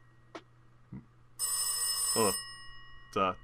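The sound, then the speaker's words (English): A telephone bell rings once in a loud, sustained, metallic burst lasting about a second, with short bursts of voice just before, during the end, and after it. “The phone rings.”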